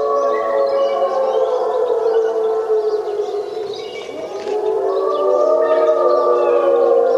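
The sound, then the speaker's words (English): A chorus of wolves howling together in Algonquin National Park, Canada, several long, overlapping wails that hold steady and then slide in pitch, continuous and fairly loud for the whole stretch, with no talking. “So what we have here are wolves.”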